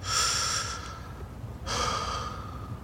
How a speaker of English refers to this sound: You need to calm down. Do your breathing exercises.